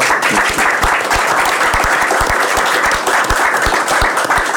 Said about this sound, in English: We can't have this atmosphere. We can't have the fun, the crack without you guys here. So please, first of all, give yourselves a round of applause.